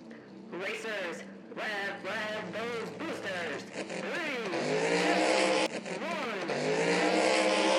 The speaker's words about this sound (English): 6 power pods and their pilots rev engines at the ready